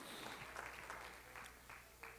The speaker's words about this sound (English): Praise God. Oh, come on, clap your hands, clap your hands, clap your hands. Hallelujah.